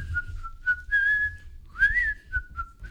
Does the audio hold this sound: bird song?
no